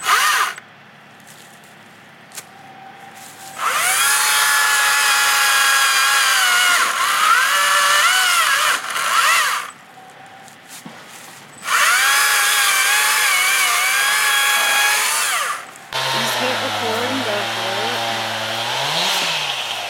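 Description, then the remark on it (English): A small chainsaw whines up to speed in two long, loud bursts with brief pauses between, then its pitch drops and wavers as it bites into wood. No one speaks. “Cheek chainsaw, y'all.”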